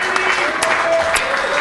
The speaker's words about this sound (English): Hey, how about a round of applause for Ernie Bach Jr., our host? Yay! There he is.